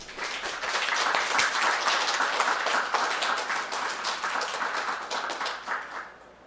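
An audience at a poetry reading applauds steadily to welcome a poet, many hands clapping in a dense, even patter that holds for several seconds before tapering off at the end.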